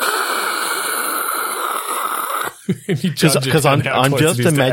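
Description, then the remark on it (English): A voice makes a steady, breathy hiss imitating white noise static for about two and a half seconds, then breaks off into chuckling and talk. “Does the player have to make white noise with their own mouth to blend in?”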